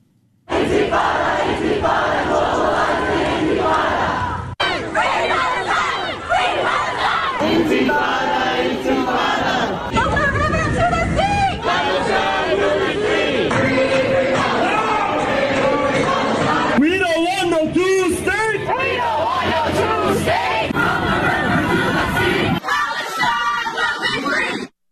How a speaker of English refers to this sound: Tomorrow, pro-Hamas marchers will bring those chants to the epicenter of America's Jewish community on Shabbat, no less. A flyer calls for flooding Brooklyn and marching about a mile from Crown Heights, where much of New York's Orthodox Jews live.